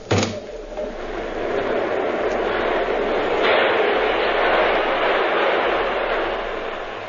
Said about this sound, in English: The train. Push open the window.